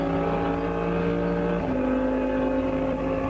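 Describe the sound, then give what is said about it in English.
Race car engines roar steadily at high revs at full throttle through the Adenauer Forest section, a dense harmonic drone that shifts pitch midway as a gear changes, loud and sustained throughout with no voices. “And it's absolutely full bore.”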